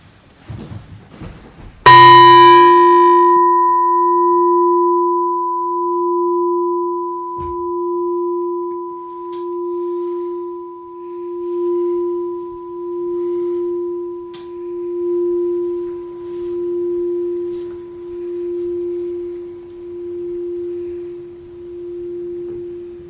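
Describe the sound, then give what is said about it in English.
A single meditation bell is struck once, its bright attack settling into a long, steady hum with a slow pulsing wobble that gradually fades over the next twenty seconds. No one speaks. “And just allow the sound of the bell to invite your awareness into present time experience.”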